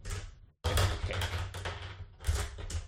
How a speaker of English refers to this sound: All right, so I'm going to roll all the dice, which is going to kind of dictate what we